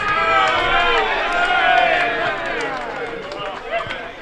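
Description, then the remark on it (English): A large crowd roars and cheers continuously as over-50s football teams, the Cowboys and Williamstown, run out onto the field on a Sunday; a dense wall of many overlapping voices that stays loud throughout, swelling slightly in the middle before easing a little toward the end. “They're all running out there now to the cheers of the crowd.”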